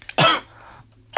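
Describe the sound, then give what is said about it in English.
A loud cough bursts out, followed by a quieter rasping trail and then the start of a second cough right at the end. “We need cough buttons.”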